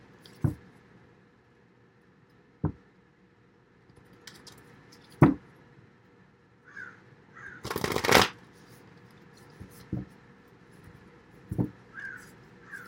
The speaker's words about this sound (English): Sorry, the cards just feel like they want to be shuffled a bit more.